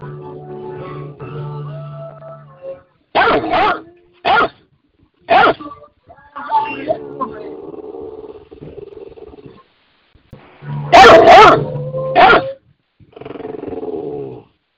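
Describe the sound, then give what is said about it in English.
A dog barks aggressively, loud sharp barks in two bursts separated by stretches of low, rumbling growling. Some barks come in quick doubles, then single snaps, with a final cluster near the end. “Yeah, I don't like no dogs.”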